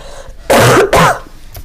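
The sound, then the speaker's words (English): Two quick, loud coughs in close succession, harsh and throaty, with a short gap between them and quiet room tone before and after. “I was waiting for you to finish coughing and I was also a little distracted.”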